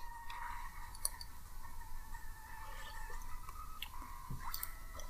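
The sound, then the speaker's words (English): Quiet sipping of hot tea from a mug, with soft slurps, small wet mouth clicks and a faint swallow against a low steady background hiss. No one speaks. “I made myself some tea, so I'm going to take a sip.”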